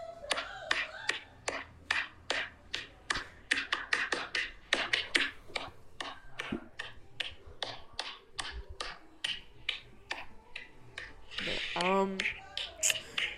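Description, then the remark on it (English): A hand slaps a stomach over and over in a quick, uneven rhythm, each sharp smack ringing out clearly, with a brief vocal sound near the end. “Why would you slap your stomach?”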